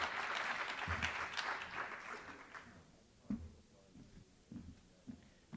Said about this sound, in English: Please a round of applause for these 2 readers. Thank you.